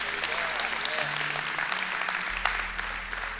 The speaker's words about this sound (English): If you believe that today, would you give the Lord a hand clap and say, yay, God.